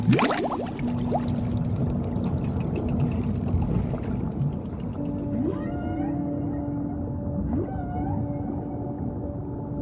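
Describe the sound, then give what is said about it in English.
A splashy plunge gives way to a steady, muffled underwater rush, with long whale-like calls and whistles echoing through the water. No one speaks. “And under the water we go.”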